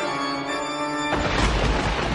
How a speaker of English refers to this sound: the skies do look like they're rolling in, and it looks like there is a storm brewing, and you know what happens when you hear the thunder roll